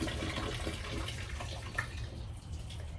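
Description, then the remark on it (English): Steady rushing water of a waterfall pours continuously with a dense, hissing roar that stays even throughout, with no voices or other sounds. “One waterfall. Just gonna give it a moment.”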